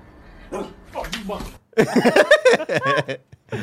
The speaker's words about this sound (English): Oh, shit, the dogs are here, too. I would love it if the dog had a little video camera, like with the fisheye lens.